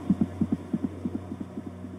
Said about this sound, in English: his irregular heartbeat